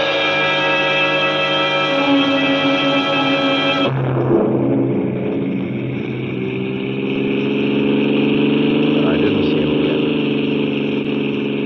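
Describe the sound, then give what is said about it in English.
A car engine runs steadily and loudly throughout as a car stops at a small junction just across the border into Oklahoma to let a train pass. There is a sharp shift in tone partway as it drops to a lower idle, then its pitch gradually rises again as it revs. “I stopped a car at a sleepy little junction just across the border into Oklahoma to let a train pass by.”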